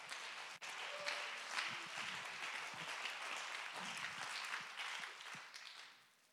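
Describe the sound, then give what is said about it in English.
A church audience claps their hands in praise of Jesus in a dense, sustained wash of applause that holds steady for several seconds, then begins to thin out and fade toward the end. “Let's clap our hands and give him praise.”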